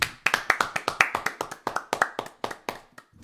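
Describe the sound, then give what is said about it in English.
A short burst of applause from a few people clapping for the engineer after the light comes back on, with quick, uneven hand claps rattling off for about three seconds before tapering to a last few scattered claps. “Should we clap it up? No shot. You're not in the shot. Clap it up for the engineer.”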